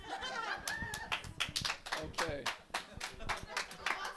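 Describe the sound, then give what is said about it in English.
Women clapping together, a brisk, uneven patter of many sharp claps that keeps going steadily, with scattered voices calling out and chattering underneath. “The women are clapping.”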